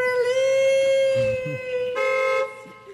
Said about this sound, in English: Okay, can you stop beeping your horn, please? And you're great. I love you. I'm not scared of you. But why do you have to keep beeping your horn? It's like I'm stuck in a loop.